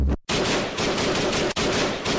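Loud bursts of rapid automatic gunfire rattle almost continuously, broken by a couple of brief pauses, with no voices present.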